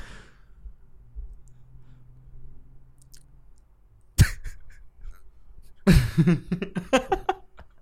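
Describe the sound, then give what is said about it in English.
A man lets out a drawn-out, voiced yawn, fairly loud, preceded by a sharp click or knock over a faint low background hum. “He's yawning.”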